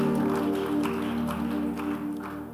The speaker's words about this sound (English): Somebody give the Lord a clap offering in the house.